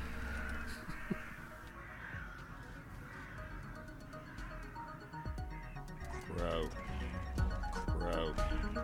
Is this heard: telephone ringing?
no